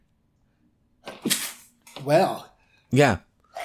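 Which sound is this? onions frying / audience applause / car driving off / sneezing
sneezing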